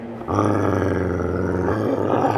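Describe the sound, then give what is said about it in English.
Low, sustained growling from dogs, rumbling steadily and loudly for a couple of seconds with a menacing, throaty texture and no talking. “Do you hear something? It sounds like a growl. Those are Sophia's dogs, aren't they?”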